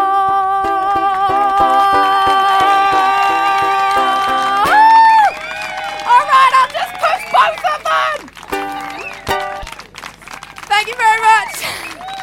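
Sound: audience cheering and applause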